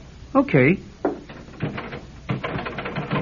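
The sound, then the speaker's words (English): A brief voiced murmur, then a door knob is turned and jiggled repeatedly against a locked door in a workshop, a steady run of metallic clicks and rattles that goes nowhere. “Take the key and open the door. Huh? You sure it's all right? Try the knob first.”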